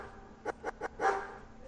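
Dogs bark in a quick run of three short, sharp yaps, then a longer, fuller bark, with another starting right at the end, with no voices over them.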